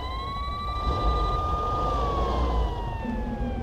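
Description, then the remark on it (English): A police car siren, on a car sent out by Hackney Police HQ, wails in one long, slow rise and fall, loud, over a low rumble of traffic. Nobody speaks. “They sent the car straight out to keep lookout and check all was okay.”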